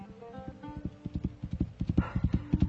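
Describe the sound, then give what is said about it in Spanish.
A horse's hooves clip-clop steadily in a stony place in the desert, a quickening run of sharp, even beats, with a brief whinny-like cry near the start. “No conozco el lenguaje del desierto, pero mi caballo conoce el lenguaje de la vida.”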